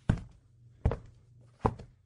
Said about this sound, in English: I hear a knocking at the south entry.